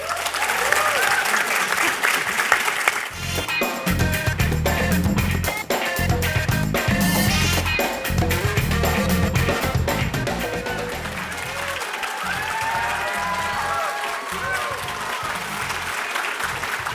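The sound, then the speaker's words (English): A live audience applauds steadily for the whole stretch, a dense wash of clapping that swells after the opening seconds, with a few faint cheers and voices mixed into the crowd noise. “It is our 100th episode, and to celebrate, we invited some of our biggest fans here to the track for a questions-only episode.”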